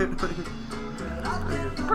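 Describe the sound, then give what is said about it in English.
A dog barks and yips in quick bursts, its calls running together over about two seconds, with a voice-like murmur mixed in underneath. “The dog bark, bro.”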